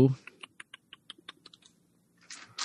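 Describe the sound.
About a dozen light, sharp plastic clicks and clacks tick along in quick, uneven succession as Dungeon Master dice are taken out and handled, with brief bits of breathy voice at the edges.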